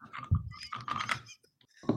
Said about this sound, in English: Wait, what? Someone's crunching on something.